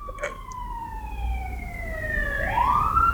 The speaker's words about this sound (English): Ambulance?